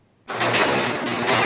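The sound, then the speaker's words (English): A shed door at a rail yard closes with a sudden, loud, sustained grinding rush that begins abruptly after a moment of quiet and continues steadily. No one speaks. “Ooh, we hear the shed door closing.”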